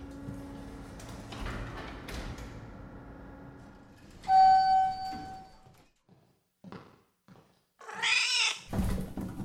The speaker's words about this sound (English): No! Dumb cat!